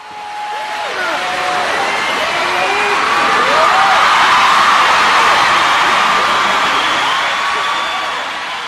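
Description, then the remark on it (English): A crowd at an evening event applauds steadily for several seconds in an echoing room, dense clapping rising slightly in the middle, with a few scattered whoops and shouts of cheering mixed in. “How about a big round of applause for Tommy?”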